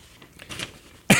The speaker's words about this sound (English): You're doing the shuffling newspaper like they do on the TV news.